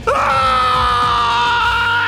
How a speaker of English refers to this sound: With a loud scream, Tornado Monster's body slowly grew transparent, then finally vanished completely.